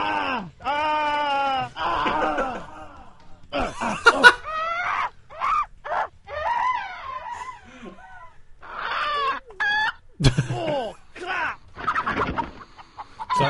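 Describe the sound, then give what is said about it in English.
Sampled video game sound effects: chicken clucks and squawks come in quick, choppy bursts, opening with a longer drawn-out call, then a fast run of short, loud clucks with brief gaps, clear. “So there's three people and a chicken right now.”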